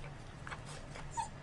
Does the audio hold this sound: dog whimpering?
yes